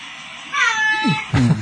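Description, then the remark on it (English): A cat in a video being watched meows loudly, a drawn-out, strained yowl followed by a shorter second cry, with a thin tinny quality as if played back through a small speaker. “Retarded cat.”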